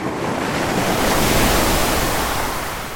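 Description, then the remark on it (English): Loud sea surf pounds down in a broad roaring wash that swells and slowly recedes, with wind gusting over the microphone throughout. “The sea crashes down, hard.”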